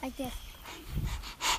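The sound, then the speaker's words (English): A person imitates a dog panting with a few quick, breathy huffs, ending in a louder exhaled burst after a brief voiced sound at the start. “Right, dogs pant, and sometimes their tongues are a little drippy, right?”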